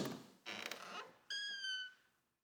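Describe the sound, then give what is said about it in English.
An apartment door creaks slowly open, first a brief rough scraping, then a long, high, whining squeal that sags in pitch and fades out. Fairly loud, with no voices. “I slowly opened it to reveal what was inside.”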